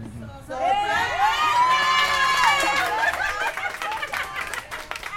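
A group of 15 women from a breast cancer support group in Chicago cheer and shout in high, excited voices as they greet a man with kisses and food at a surprise birthday party for him, bursting in together after a brief lull and staying loud for several seconds, with laughter and overlapping chatter mixed in.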